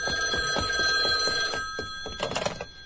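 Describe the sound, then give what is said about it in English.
An old-fashioned telephone bell rings in rapid, rattling bursts in a Mutual Radio Theater radio drama, a bright metallic clatter with steady high tones, continuing for several seconds with no one speaking. “I think I hear the telephone. Let it ring.”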